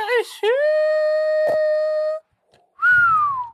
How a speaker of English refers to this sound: He's gonna whistle.